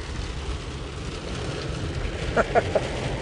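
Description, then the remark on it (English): Heavy rain drums steadily on a car roof, heard from inside a car pulling into a church, a dense, continuous hiss with a low rumble underneath, and a few brief faint vocal sounds near the end. “And this also applies to, boy, can you hear that rain?”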